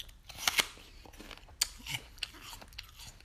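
Crisp crunching of someone biting into and chewing a firm, grainy-textured, sweet apple, with a couple of sharp snaps early on followed by quieter, wet chewing sounds and no talking.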